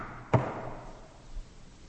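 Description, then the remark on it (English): A single sharp knock on the innkeeper's door in a Christmas nativity play, as Joseph and Mary arrive in Bethlehem, rings out once against a quiet background, followed by a faint, dull low thump about a second later. “Joseph and Mary made their way to Bethlehem, to the innkeeper's door, and they knocked.”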